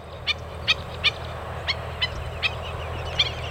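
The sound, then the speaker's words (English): Birds call repeatedly by the sea, at a stop on the Pacific flyway migration route, about eight sharp, harsh cries at uneven intervals, heard over a steady low rumble of surf and wind, with no one speaking. “It's surprising, but birds still come to the sea.”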